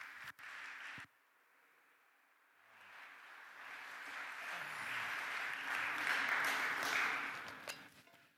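A room full of people claps together, the applause swelling gradually from quiet to a steady, loud crescendo before cutting off near the end. No one speaks over it.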